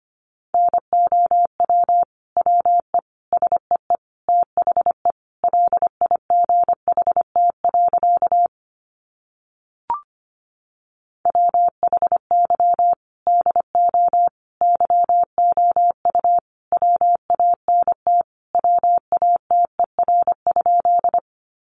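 Morse code sent at 25 words per minute: a steady mid-pitched beep keyed into quick dots and dashes, two long runs separated by a short pause with a faint click, and no voices.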